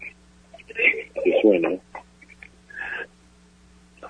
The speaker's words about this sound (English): Excuse me. Hold on, please. Okay. There's another phone. Hold on. There's this one.